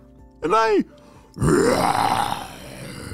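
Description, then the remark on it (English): A voice imitates the roar of Fluffy, a chicken turned into a dinosaur: a short, pitched, warbling cry, then after a brief pause a longer, loud, raspy growl that slowly fades. “And I can roar! Somehow, Fluffy the chicken had turned into a real dinosaur.”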